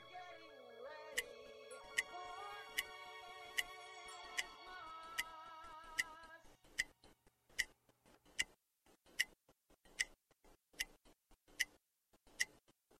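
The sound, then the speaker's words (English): A clock ticks steadily at an even pace, crisp. Soft sustained music plays underneath at first, then fades out, leaving the ticking alone. “The hands on the clock continued to turn.”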